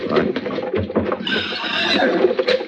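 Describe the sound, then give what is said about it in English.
Horses whinny and snort, with a shrill drawn-out neigh in the second half, over a busy patter of hooves stamping and shuffling on the ground. “hold on to them horses.”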